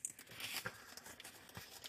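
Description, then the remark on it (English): Paper rustles and crinkles as one slip is picked out at random from among about ten paper slips, a quiet, continuous scratchy crackling with a few sharper crinkles along the way. “So I'll have you just pick out one random one. There should be 10 in there, so make sure you get one piece of paper”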